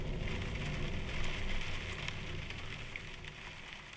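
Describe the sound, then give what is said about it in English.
Steady rain patters down in a dense wash of tiny drops, with a few sharper taps standing out. The sound is even and continuous at a moderate level, with no voices. “When you get to the cabinet, you then go to the window and see the rain plop, plop, plop.”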